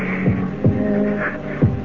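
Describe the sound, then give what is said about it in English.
A person's own heartbeat thumps heavy in a lub-dub rhythm, three low pulses over a steady dull hum with no voices. “Bend over her and listen if I can hear a heartbeat.”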